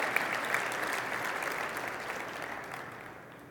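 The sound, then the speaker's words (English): An audience at a conference claps steadily in a dense, continuous wash of applause for the conference president and organizing team, gradually fading in loudness toward the end, with no speech over it. “Can we give them a hand of applause for what they have done?”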